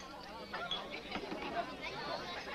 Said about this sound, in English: Yeah, I think that there's the crowd just waiting for the song.